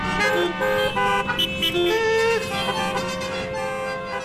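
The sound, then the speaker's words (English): A dense chorus of car horns from 125 automobiles that just arrived in Grover's Corners honks over one another, steady tones overlapping with sharper toots, loud and continuous for the whole stretch with no pauses. “This wouldn't be a problem except for the 125 automobiles that just arrived.”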